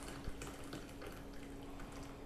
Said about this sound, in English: Oh dear God! At the long pour. It's my first coffee of the day.